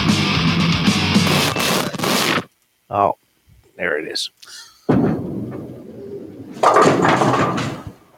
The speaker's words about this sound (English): Bowling pins getting everybody, knocked over. Everybody.